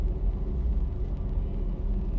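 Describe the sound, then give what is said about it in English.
A steady low rumble of distant car traffic heard from a garden in British Columbia, continuous and fairly soft, with no voices or distinct nearby vehicles standing out. “What I hear is the cars in the distance.”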